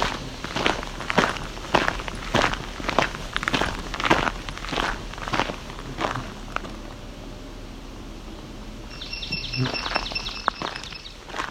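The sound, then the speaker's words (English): Steady crunching footsteps fill the first several seconds, then a swamp sparrow's rapid, ringing trill of evenly repeated notes sounds clearly near the end. “Hear that ringing? That is a swamp sparrow.”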